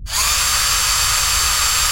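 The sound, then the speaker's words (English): A drilling rig gives a steady, loud mechanical drilling whir that starts abruptly and holds constant, with a bright high-pitched whine over a rumbling low drone. No voices. “It's our ultra-deep-water, dynamically positioned, semi-submersible drilling rig.”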